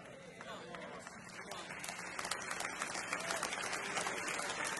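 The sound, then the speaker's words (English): Sustained applause from an audience, dense and steady, growing slightly louder in the second half, with indistinct voices mixed into the clapping. “I don't know why people are clapping.”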